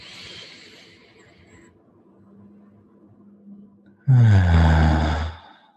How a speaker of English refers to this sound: And let us finish this practice with three deep breaths together. Breathing in. And breathing out. Again.